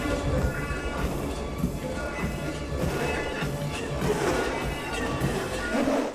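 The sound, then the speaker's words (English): Busy roller rink ambience at Wynwood Skate Center in North Kansas City, filled with skaters of all skill levels: a steady, dense wash of rolling wheels, crowd chatter and occasional clacks and thumps, with hip-hop and house music playing through the sound system underneath throughout. “Skaters of all skill levels filled the rink at Wynwood Skate Center in North Kansas City.”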